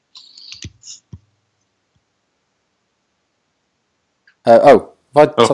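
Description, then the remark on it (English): A few quick keyboard key clicks at the start, an accidental button press that muted the speaker, followed by several seconds of silence before a person begins speaking. “I think I accidentally hit a button on my keyboard, which made me mute.”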